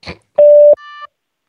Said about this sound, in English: Leave a message after the tone, and I'll call you back.